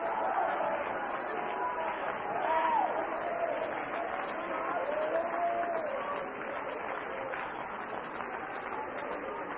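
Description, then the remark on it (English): A church audience shouting together, a dense, continuous roar of many voices with rising and falling cries, staying loud and steady throughout with no single speaker standing out. “Now, I don't want you to quit shouting. Please don't quit shouting.”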